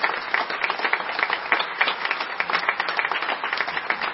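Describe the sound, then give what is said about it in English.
An audience applauds graduates who are standing up, a steady, sustained, dense crackle of many hands clapping at once that stays fairly loud and even for the whole stretch, with no voices standing out. “Let's just applaud for that.”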